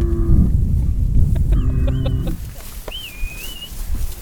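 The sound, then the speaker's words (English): A cow named Coco, not tame, lets out a low, droning moo amid farmyard noise, with harmonic animal calls and a thin, high chirp following; no one speaks. “Yeah, that cow's not tame at look all.”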